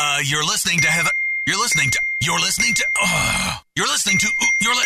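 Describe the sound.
A mobile phone rings during a radio show on Laser 103.3, a steady, high-pitched tone that carries through the whole stretch, layered over a run of voice-like tonal sounds and pausing briefly near the end.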